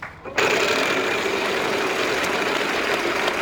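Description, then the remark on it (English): A game show prize wheel spins with a rapid, steady stream of mechanical clicks that starts abruptly and stays loud throughout, with no talking. “I have to spin.”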